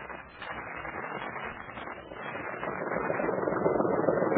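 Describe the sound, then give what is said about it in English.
A patrol boat motor runs steadily with a dense, buzzing drone that grows slightly louder toward the end. No voices are heard. “You'd better take her downstream, young Gup, and we'll follow in the patrol boat. Karen, I can run it. A motor in it and a machine gun so that we can disperse the enemy.”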